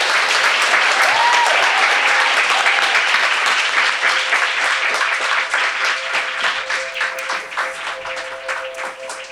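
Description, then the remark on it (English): A live audience breaks into loud, sustained applause, a dense wash of many hands clapping that gradually thins and softens toward the end, with a few faint voices and whoops mixed in. “Let's give a big round of applause to Arianna.”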